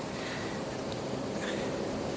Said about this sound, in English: There's a fast flowing river to the side because it's been raining all night.